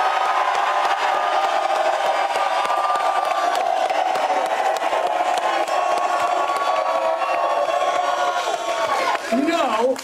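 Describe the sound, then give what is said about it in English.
The large live studio audience of the Fox show Undisputed, outside State Farm Stadium at Super Bowl 57 and full of Dallas Cowboys fans, cheers and whoops continuously: a loud, dense wall of voices with scattered shouts that holds steady for the full ten seconds. “This crowd is full of Cowboy fans.”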